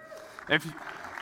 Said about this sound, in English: We can clap. We should clap.